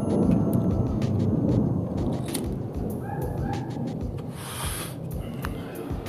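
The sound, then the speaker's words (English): An airplane roars overhead, a steady, loud, low rumble filling the whole stretch, with a few faint clicks and brief higher chirps scattered on top. “These goddamn airplanes are ruining my show.”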